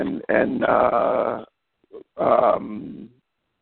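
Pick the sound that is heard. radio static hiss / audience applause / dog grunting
dog grunting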